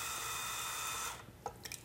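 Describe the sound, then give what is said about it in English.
An electric shaver, a Skull Shaver platinum model, buzzes steadily with its head tipped under running tap water for about a second to rinse out hairs, its motor whine mixed with a hiss of running water, then cuts off, leaving a few faint drips and clicks. “So you do this, and then that's just water. You tip in the head of the thing and you just run it.”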